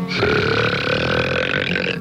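A long, loud burp rumbles continuously for about two seconds, deep and resonant with a sustained croaking tone, with no talking over it.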